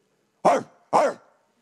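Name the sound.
people imitating dogs barking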